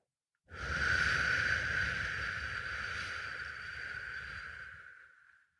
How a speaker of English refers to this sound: And then exhale through the mouth, kind of pursing your lips and making a whoosh kind of sound for 8 seconds.